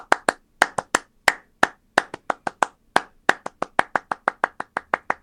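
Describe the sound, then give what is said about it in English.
A crisp electronic hand clap sound from a Linn drum machine, with its hi-hat set to hand claps, repeats in a quick, steady pattern, sharp hits with short decays, loud, with no voices or other instruments. “on those machines, the hi-hat could also be hand claps, depending upon which way you set it”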